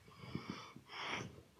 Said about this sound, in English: Yeah, he's sniffing the phone. He's holding his breath now.